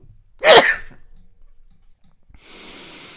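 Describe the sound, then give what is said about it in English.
A single loud, explosive sneeze, followed by a short quiet pause and then a steady soft hiss, like a long exhale. “I'm going to sneeze.”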